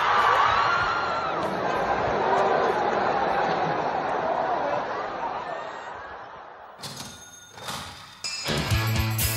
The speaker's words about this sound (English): The following audio does not quite, regrettably, convey the full rage of the crowd or the quantity of beer in which the scofflaw, once apprehended, was doused.